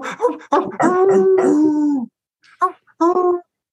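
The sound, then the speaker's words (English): A person imitates a dog to bark about the Bucks, letting out a long wavering howl followed by a few short yipping barks, loud with brief pauses between. “Good job barking, though.”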